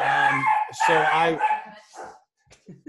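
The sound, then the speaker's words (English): A dog barks loudly at the next-door neighbor's dog, giving two long, drawn-out barks followed by a few shorter, quieter yaps that trail off. “He doesn't like our next door neighbor dog.”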